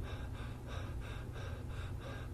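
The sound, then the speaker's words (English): Rapid, shallow panting breaths from the chest, like a dog panting, about six or seven quick airy huffs in a steady rhythm, deliberately exaggerated, with no talking. “Almost like they're panting. Now, of course, I'm exaggerating the noise.”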